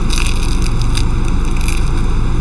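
Loud, crackly crunching of food being chewed outdoors, a dense continuous texture with sharper bursts recurring about every second, and no voices.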